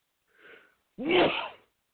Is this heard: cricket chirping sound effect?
no